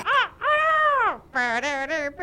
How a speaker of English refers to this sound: I got a crow.